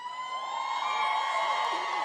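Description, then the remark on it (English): A large crowd of young women in their 20s screams and shrieks together in a sustained, high-pitched roar that stays loud and steady throughout, with no clear individual voices. “I just know I just heard a lot of screaming girls in their 20s yelling.”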